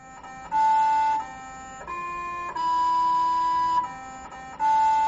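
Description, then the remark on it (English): The Sample Analysis at Mars (SAM) instrument on a Mars rover, programmed by team members to play Happy Birthday for the rover's one-year landing anniversary on August 5, 2013: a string of buzzy, electronic tones, about six sustained notes shifting in pitch, the longest held in the middle, no voices. “some of the team members on the SAM instrument, that's Sample Analysis at Mars, found that the instrument makes tones and that they could program it to play Happy Birthday.”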